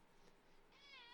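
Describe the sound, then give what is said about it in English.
A male cat lets out a single drawn-out meow, rising and wavering in pitch, fairly loud after a brief moment of quieter background noise. “And I have to say, I have to remind myself, I love this cat.”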